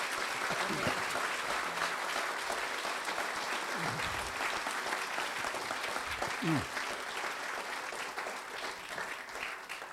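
An audience at an author event claps in a steady, dense round of applause for the authors that fills the whole stretch, with no one speaking over it and a few faint vocal sounds rising briefly beneath the clapping.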